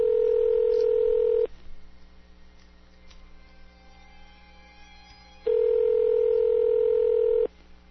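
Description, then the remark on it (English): A phone line rings out: two long, steady buzzing ring tones about four seconds apart, with quiet line hiss in the pause between them. No one speaks. “The dreadful silence of the ringing.”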